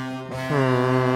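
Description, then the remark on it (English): A loud, sustained foghorn blast sound effect with a deep, buzzing tone, swelling slightly louder halfway through and holding steady to the end, introducing the NHL segment. No voices are heard. “Let's go ahead and hit the NHL. All right, let's do it. Foghorn Leghorn.”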